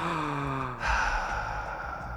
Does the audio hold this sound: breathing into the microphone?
yes